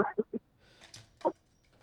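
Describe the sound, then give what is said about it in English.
Several short, harmonic bird calls ring out in the open on a Friday night in a big city: a quick run of three, a pause, then one more, fairly faint, with no talking. “Moon is out. Birds are out.”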